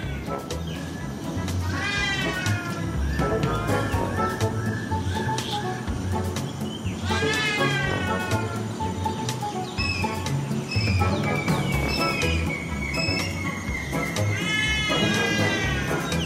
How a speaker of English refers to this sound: As you listen more closely, it sounds almost like a plastic party horn. You've been hearing the trumpeter hornbill.